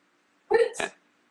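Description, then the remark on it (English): A single quick sneeze, a short voiced intake snapping into a sharp, hissy burst, fairly loud, then quiet. “Bless you, Master.”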